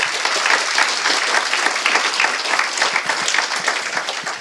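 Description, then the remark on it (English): An audience at an event at Level 39 applauds steadily, many hands clapping in a dense, loud wash of sharp claps that holds at an even level throughout without pause. “So give those guys a round of applause as well.”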